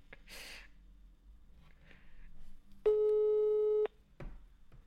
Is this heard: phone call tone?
yes